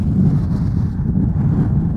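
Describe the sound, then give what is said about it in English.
Strong wind from a huge storm with heavy snowfall roars steadily with a deep, low rumble and constant buffeting, loud throughout and with no voices. “Where it's this huge storm, like I really shouldn't be out here today.”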